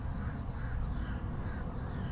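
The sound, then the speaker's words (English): Several crows caw repeatedly as they fly, some flying back and cawing, their harsh calls fairly faint over a steady low outdoor rumble, with no one speaking. “It's funny too, because like some of the crows will fly backwards and they'll start cawing. You might be able to hear them.”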